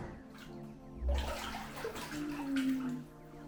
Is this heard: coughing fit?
no